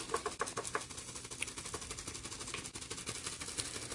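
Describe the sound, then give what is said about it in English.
Continuous crinkling and rustling made as a sound effect meant to sound like a plastic bag blowing in the wind, with dense irregular crackles and snaps at a fairly steady level and no voices. “That's supposed to be sounding like a bag blowing in the wind.”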